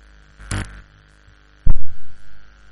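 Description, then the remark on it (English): A steady low electrical hum from a church sound system during a sermon, broken by two loud bursts of crackling static, the second followed by throbbing, pulsing buzz, the static thought to come from a plugged-in device. No one speaks. “Unplug that thing. I think that's where the static is coming from.”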